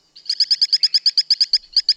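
A small tree frog endemic to Brazil calls alone in a quick, steady train of about a dozen short, high-pitched chirping pulses, evenly spaced and fairly loud, with a brief gap before the last couple.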